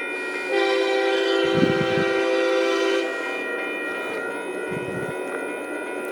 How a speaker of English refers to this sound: And so many diesel engines it's got. Oh, it's loaded down. It's heavy. One, only two, three engines.